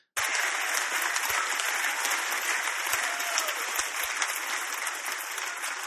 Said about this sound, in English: He's just working them up into a frenzy. They don't know what they're really clapping about anyway, because he ain't saying nothing that makes any sense.